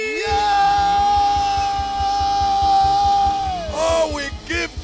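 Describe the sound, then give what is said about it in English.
An audience at a church service screams and cheers in one long, loud, sustained cry over a steady pounding drumbeat, then the voices waver and break up near the end. “Somebody shout hallelujah! Hallelujah! Someone scream!”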